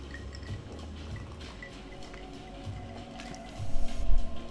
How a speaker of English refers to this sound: Get a sip of my drink.